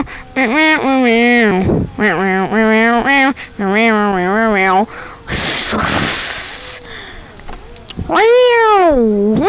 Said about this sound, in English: Meow meow meow. Meow meow meow meow. Meow meow meow meow meow meow meow meow.